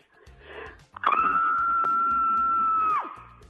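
A woman caller on the Morning Mix radio show's scream line lets out one loud, sustained high-pitched scream, holding a steady pitch for about two seconds before cutting off sharply, after a brief murmur of background noise.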